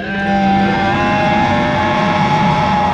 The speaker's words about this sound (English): The distant sound of a roar echoing in the air.